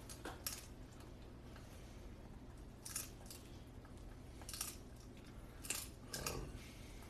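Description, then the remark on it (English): A female dog chewing, heard as faint, irregular crunchy clicks and soft gnawing bursts spaced a second or two apart against a quiet background hum. No one speaks. “I suppose that her chewing is better than barking.”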